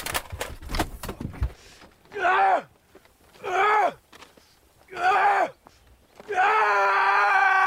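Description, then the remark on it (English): The opening of a six-minute Volkswagen advertisement short film from Denmark: a man screams angrily in loud bursts, three short raw yells with pauses between, then one long sustained scream. A few sharp thuds come at the start. “So, yeah, not too many ads open with a guy screaming his head off in anger.”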